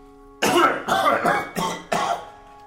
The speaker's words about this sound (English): Several times every night we hear him coughing. It's not just the coughing.